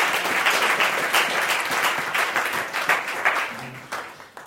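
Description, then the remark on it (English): At a morning church service, an audience gives the Lord a round of applause, a dense, steady wash of many hands clapping that stays loud for several seconds before starting to thin and fade at the end. “Let's just give the Lord a round of applause.”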